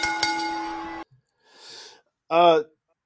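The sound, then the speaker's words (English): A bell rings with a bright, sustained metallic tone for about a second before cutting off, followed by a soft breathy exhale and a short voiced vocal sound. “Ring that bell.”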